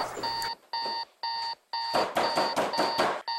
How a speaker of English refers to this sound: Man, cut that fucking alarm off, dog! It's too fucking early in the morning for that shit!